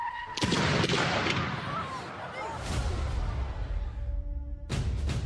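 A yellow school bus carrying children has a tyre burst with a sharp, loud bang near the start, followed by several more booming thuds over a constant low rumble and a dense, noisy background.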